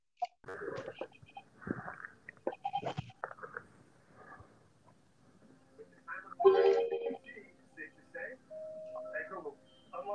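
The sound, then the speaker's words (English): A person imitates a goat's bleat with wavering, nasal vocal bursts, fairly loud, broken up by short pauses and other voice sounds. “Okay, are you saying a puppet goat?”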